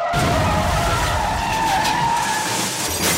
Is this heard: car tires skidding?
yes